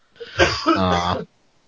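Someone clears their throat once: a rough, raspy burst that turns into a short voiced rumble, lasting about a second, with silence on either side.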